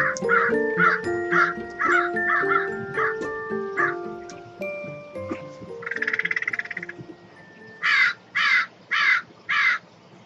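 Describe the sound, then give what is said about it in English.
Melodic music from a portion of a song plays first, then a crow caws four times near the end: loud, harsh, evenly spaced calls, following a brief rough burst of sound. “Let's listen to this song, that portion of the song, and then a crow call.”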